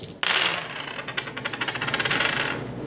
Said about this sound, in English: These dice get dramatic, don't they?